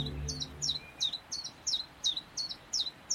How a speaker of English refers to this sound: Each year, a huge wave of willow warblers floods in from Europe, filling woods and parks with their song.